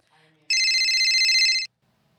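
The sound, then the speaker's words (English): A telephone rings once in a loud, bright electronic trill lasting about a second, clear, preceded by a faint murmur of voices in the background. “Iron Man steps out to take a phone call”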